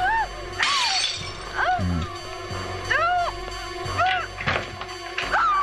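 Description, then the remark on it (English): A loud crash of the glass of a patio door shattering as a person smashes it bursts out near the start, followed by repeated shrill, rising-and-falling vocal cries and clattering bumps throughout. “And … is about to smash the glass. Or the patio door will have to be replaced.”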